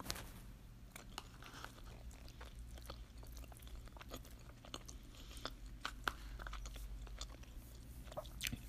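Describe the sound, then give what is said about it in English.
Chewing a dish of spaghetti and zucchini noodles with tomatoes and red onions, with wet, irregular bites and occasional soft crunches, steady over a low hum, no talking. “So like I mentioned earlier, it's mostly spaghetti noodles with a mix of zucchini noodles.”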